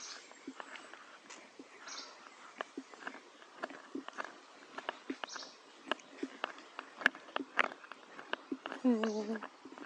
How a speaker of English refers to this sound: Now we just listen to the running water. And the birds, yeah.